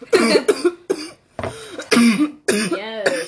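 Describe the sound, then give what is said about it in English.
A run of harsh, raspy coughs in quick bursts, loud, with brief gaps between fits and a strained, wheezy edge as the person struggles after inhaling smoke from a bong hit. “I always say, if you didn't cough, you didn't get high. And I feel like you got high there.”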